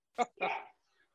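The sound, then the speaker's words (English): A small dog lets out two quick, high-pitched yappy barks, the second a bit longer, followed by near silence. “I see a little doggy there too.”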